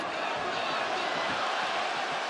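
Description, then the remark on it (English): A large arena crowd at a fight in the octagon roars steadily and loudly throughout, a dense wash of cheering and shouting, with indistinct voices of commentators and coaches blended into the din. “All right, so between the noise of the crowd and the commentators, you could hear two other voices that were the sound of the coaches as they were coaching their players.”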